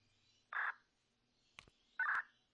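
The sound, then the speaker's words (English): Two short electronic beeps from push-to-talk on the Zello app: a transmit tone when the PTT button is keyed, then a release tone when the button is let up, about a second and a half apart. A faint click falls between them, with no talking. “So you heard those two tones. That's the transmitting tone and the tone that you get when you let your button up.”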